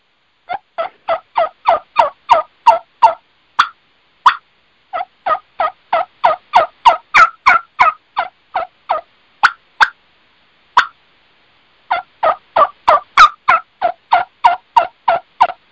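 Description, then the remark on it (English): Soft turkey tree calls and bubbly clucks of Eastern and Osceola turkeys, recorded on a cell phone, in quick, rhythmic bursts, each note raspy with a low undertone, repeating steadily with brief pauses between runs. No one speaks. “And you hear the bass and the rasp in those little clucks.”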